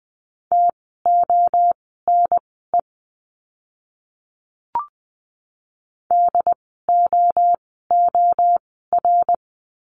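Morse code practice words for the letter d, sent at 20 words per minute: a steady mid-pitched beep keyed in quick dots and dashes, two runs of characters split by a pause broken by a single soft click.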